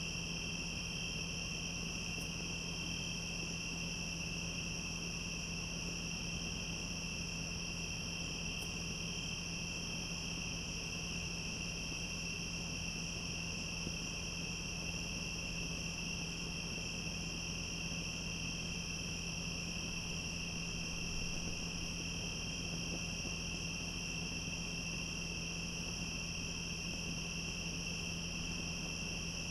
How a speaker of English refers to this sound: The listeners can enjoy the crickets.